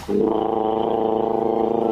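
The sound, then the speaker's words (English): A person on air on a radio show during a heatwave imitates an electric fan with a loud, steady buzzing hum from the throat, held unbroken for about two seconds with a slight rattling wobble and no talking. “And our first contender comes from Monday's show, when the heatwave had us getting you on air to do your best impressions of, well, a fan.”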